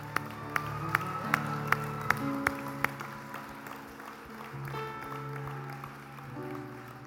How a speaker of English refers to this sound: Give Jesus a big hand clap of praise.